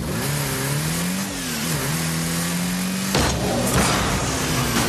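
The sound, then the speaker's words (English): A rocket car engine in the video game Rocket League revs with a steady droning whine that rises and dips, then a sudden burst of boost and impact noise takes over partway through as the car jumps, hits the ball and scores a goal, loud. “The car jumps. The car hits the ball. Scores a goal.”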